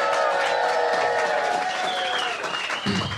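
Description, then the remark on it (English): A live crowd at the Bus Stop venue claps steadily and cheers, with high whoops and shouts rising over dense, continuous applause that holds loud for the whole stretch. “Give it up for the bus stop.”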